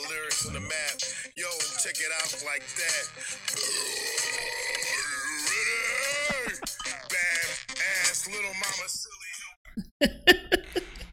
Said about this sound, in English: Yeah. Fucking burp.